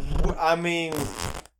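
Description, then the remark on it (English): A person vocally imitates a fart, voicing the sound effect "Brappa Lorch": a buzzy, sputtering voiced noise that rises in pitch and then breaks into a breathy, hissing trail before cutting off, fairly loud. “That sounds like a fart noise.”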